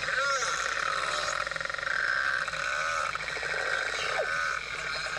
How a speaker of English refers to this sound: Was that a different noise in the area or a boat? Or? No, those were all belugas.